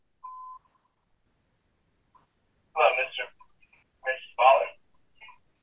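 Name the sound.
mobile phone ringing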